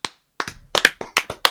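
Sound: clapping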